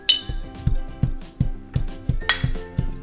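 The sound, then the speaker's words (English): Glasses clink together in a toast, a bright ringing chime at the start followed by a quick, steady run of repeated clinks with a fuller, lower knock under each one. “Yeah, cheers. Cheers.”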